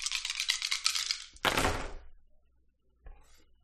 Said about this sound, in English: I'm going to use the one die in my karma pool, so I'm going to roll 7 dice.